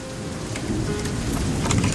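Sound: rain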